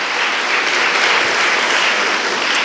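Steady, loud applause from a crowd, a dense wash of many hands clapping continuously for a few seconds with no talking over it.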